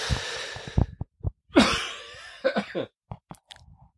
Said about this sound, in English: So if I talk for a long time, I'm going to end up coughing. So I'm going to do this really quick because we're going to jump into the podcast right away. And I got that cough.